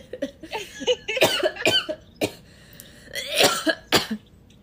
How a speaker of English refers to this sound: That was a good one. And you got two coughing?